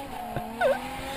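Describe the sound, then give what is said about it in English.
A car engine, restarted after stalling, hums steadily, then revs and surges briefly with a sharp, whining sweep as the car pulls away, fairly loud, with no voices. “Listen to it, rev the engine. Here we go! We're off!”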